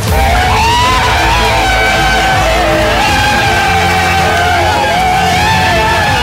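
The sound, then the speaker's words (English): A large crowd of Brazilians screams, cheers and yells continuously on a beach, many overlapping voices rising and falling in pitch, loud and chaotic throughout with no single voice standing out. “Ooh, on the beach, she was pandemonium.”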